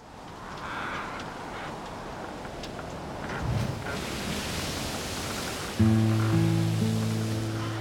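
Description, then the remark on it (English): A steady, dull roar of ocean waves fills the scene, broad and continuous with gentle surges, before a low, sustained droning tone rises over it near the end. “After 5 days of hearing nothing but the ocean's dull roar, the sound stood out like fireworks in a summer sky.”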